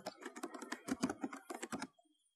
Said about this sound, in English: So I'm going to type in, and bear with me because I'm about to type on the keyboard and you will hear that. So let's search for Britspit.